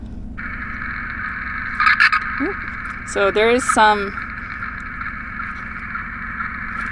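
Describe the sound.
Steady, loud static hiss from a radio telemetry receiver in a truck, set to an animal collar's frequency, runs almost the whole time, broken only by a few short crackles, while a person speaks briefly over it.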